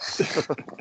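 A dog growls in a quick series of low, rough rumbling pulses, about four or five within a second, set against a steady hiss that fades partway through.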